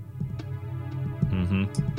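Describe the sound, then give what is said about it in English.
Low, throbbing stomach gurgles rumble through eerie video game music inside Lord Jabu Jabu's belly, with bubbly mid-pitched blurps swelling midway before a brief high squelch; no one speaks. “There's that stomach ache noise.”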